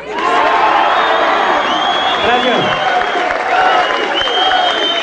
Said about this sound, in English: People yell … and Viva, and then there she is.